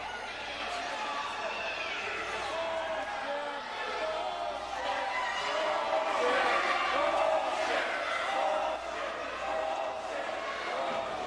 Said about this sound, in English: Being yelled at by the crowd. They are not happy with the big hurt interfering in this match.